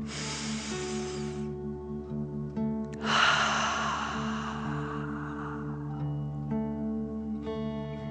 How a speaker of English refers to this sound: Remember to breathe in through your nose, filling up your chest and belly, and then out, pretending you are breathing fire. Deep breath in and out.